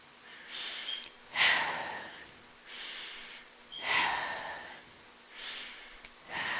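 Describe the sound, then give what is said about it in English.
Slow, deep breaths, each inhale and exhale audible as a soft rushing airflow, about five cycles in a steady, unhurried rhythm with no talking, taken as part of a meditation exercise. “Those are deep breaths, right?”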